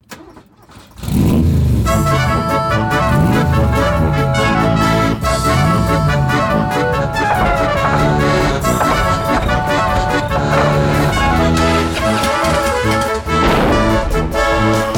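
Bouncy polka-style cover music kicks in after a quiet first second, then plays loud and steady with a busy, oompah-like rhythm and bright accordion-like tones throughout.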